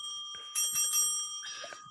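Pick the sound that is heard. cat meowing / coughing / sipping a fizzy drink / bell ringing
bell ringing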